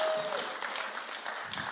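An audience breaks into applause, a dense, steady patter of many hands clapping at an even level for a couple of seconds, with no pauses or standout claps.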